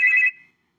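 A single short electronic ring from a phone signalling an incoming call, a bright steady tone lasting a fraction of a second before fading quickly into silence, heard alone.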